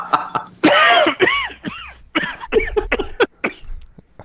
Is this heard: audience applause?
no